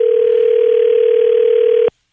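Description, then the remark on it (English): A steady, unbroken telephone dial tone hums loudly over faint line hiss for nearly two seconds while a call is placed to a Cash for Life lottery winner, then cuts off abruptly. No one speaks. “Call back in a couple minutes. Was he just trying to get us off the phone, or will he answer?”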